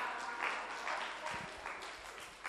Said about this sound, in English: Clap for the pastor. Clap for the pastor.